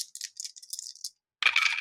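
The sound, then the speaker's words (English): Dice rolled in a tabletop roleplaying game rattle and clatter in a quick series of sharp, bright clicks, then a short pause before a louder final burst of tumbling clatter, landing double sixes for a critical. No one speaks. “I think 3 dice is enough to succeed here.”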